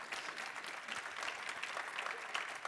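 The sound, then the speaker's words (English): A crowd of people claps steadily, a dense wash of many hands with no clear individual beats, holding an even, moderate level throughout without voices. “You can clap.”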